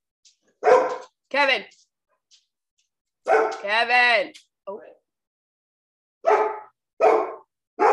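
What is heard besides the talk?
dogs barking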